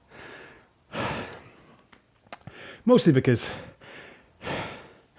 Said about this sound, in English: If you were watching this and there's that moment when I was just breathing heavy and having a drink, it's not that bad.